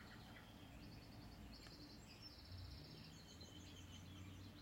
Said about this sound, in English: We're grateful for the birds outside.